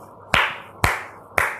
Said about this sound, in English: Clap, clap, clap was the loud and unfamiliar sound that woke up the Bobbit Beaver family.